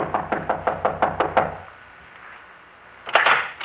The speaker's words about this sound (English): Answer, Chief. Try knocking.